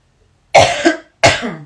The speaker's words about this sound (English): I gotta take a cough with all this Palo Santo everywhere.